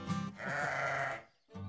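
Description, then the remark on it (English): A sheep bleats loudly, a wavering nasal cry lasting about a second, followed by a short pause and the start of another bleat. “But have you ever tried to steer a sheep?”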